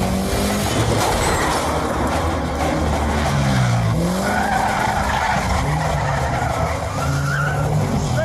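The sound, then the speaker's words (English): Tires skid and squeal loudly over a constant roar of a speeding car engine during a high-speed chase, the pitch sliding up and down through several seconds of continuous chase noise. “Not expecting a high speed chase. Not expecting some crazy broad to run into your car.”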